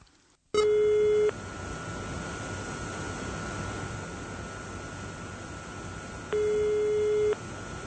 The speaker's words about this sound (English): Mr. Weinke picks up the phone and calls the mayor.